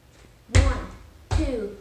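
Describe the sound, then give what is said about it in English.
Two heavy foot stomps, part of a stomped rhythm submitted by a listener from Beaverton, land about three-quarters of a second apart, each a loud, low, booming thud with a short ringing tail. No voices accompany them. “Stomping is a great way to communicate rhythm, and you could hear how much it carried through in his voice as well.”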